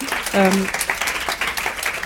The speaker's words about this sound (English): Fine, please do. Please clap.